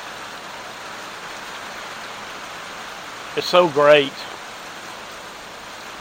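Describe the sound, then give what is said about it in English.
Steady rain hisses evenly throughout, a soft continuous wash of falling water. About midway, a person speaks briefly over it. “Here comes the rain again.”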